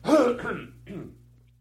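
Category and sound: human body sound, coughing and throat clearing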